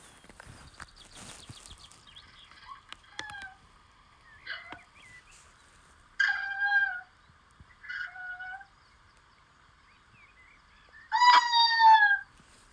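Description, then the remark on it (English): An eastern screech owl gives a series of trilling, whinny-like calls, about five short quavering bursts separated by pauses, the final one loudest, over faint background hiss. “The eastern screech owls have more of a trilling whinny, and we'll play that sound for you right now.”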